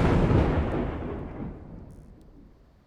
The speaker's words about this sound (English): And the ring flashes and he says a few words and the runes on the stone circle flash some more and he disappears in a crack of lightning.